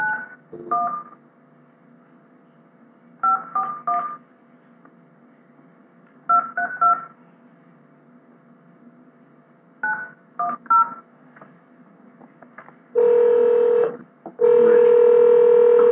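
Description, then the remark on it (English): A phone number being dialed to call the winner of a drawing: short touch-tone beeps in separate clusters with pauses between them, followed by two long, steady ringing tones. No one speaks. “Call number”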